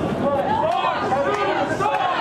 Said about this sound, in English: A lot of people in the crowd are not wearing masks. We're keeping a respectful distance, but a loud and very boisterous crowd. You'll start hearing them start up here.